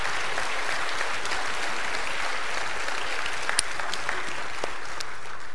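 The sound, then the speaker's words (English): A steady round of applause from an audience, dense clapping filling the whole clip at a fairly even loudness, with a few sharper claps standing out near the end and no one speaking. “All right, please give them a round of applause, and thank you so much.”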